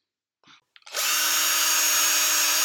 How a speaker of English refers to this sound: My dad is going to play the noise of a drill, and we are going to shout I and O.